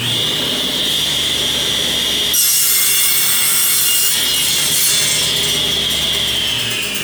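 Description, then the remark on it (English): A new industrial 220-volt table saw, weighing about 400 pounds, whines at a steady high pitch, then bites into wood with a loud, rough, hissing roar that continues for several seconds before easing off slightly. “There's sawdust all over the phone. That's my new table saw.”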